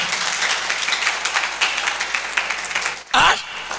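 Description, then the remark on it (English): A church audience claps during a sermon at the preacher's call, in a steady, dense wash of applause lasting a few seconds, then a single loud voice cries out at the end. “Clap, oh, clap, clap.”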